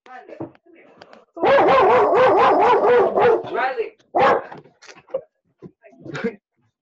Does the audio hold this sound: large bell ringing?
no